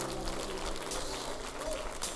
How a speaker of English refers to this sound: Come on, give the Lord God a clap offering.